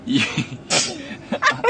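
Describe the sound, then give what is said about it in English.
A sharp sneeze bursts out near the middle, followed by a couple of smaller snuffly sneezes or sniffs in quick succession, with some breathy sounds and light voice around them. “Bless you”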